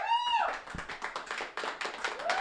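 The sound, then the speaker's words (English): A crowd bursts into steady, dense clapping, applauding to vote that Pixar is the better studio, with a couple of rising whistles or whoops ringing out over the applause at the start and end. “Give a round of applause if you think that Pixar is the better studio.”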